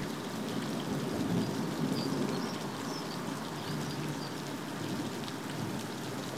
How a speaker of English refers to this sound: The deluge is so much that little rivers erupt everywhere, falling off roofs, running into alleyways, spilling off the deck, through the garden.